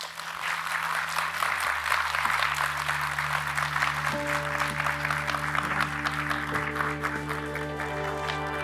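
A crowd applauds steadily for several seconds to thank three guest speakers, a dense, even patter of many hands clapping at a consistent loudness, with a low sustained hum underneath and no one speaking.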